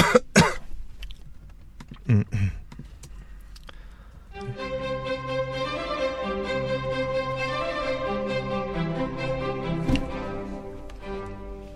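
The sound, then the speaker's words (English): A few sharp coughs in quick pairs ring out alone near the start, followed by silence before sustained, steady instrumental music fades in and carries on. “stop it. You know my opinion about coughing.”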